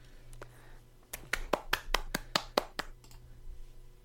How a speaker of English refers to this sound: They warrant that round of applause.